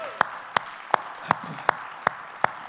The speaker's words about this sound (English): Come on, let's just clap that in and declare it today in agreement.